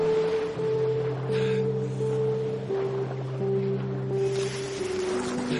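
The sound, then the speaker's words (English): Steady wash of ocean surf around a lighthouse in the middle of the Atlantic Ocean, with low sustained tonal hums like a horn or engine droning underneath. Continuous and fairly loud, no voices. “And then we have this lighthouse in the middle of the Atlantic Ocean.”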